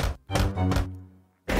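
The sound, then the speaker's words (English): Puss in Boots knocks on the giant's castle door: heavy, booming knocks on a large wooden door, three evenly spaced thuds with a deep resonant ring between them, a short pause, then a fourth loud knock. No voices. “Meanwhile, Puss in Boots arrived to the giant's castle and knocked the door.”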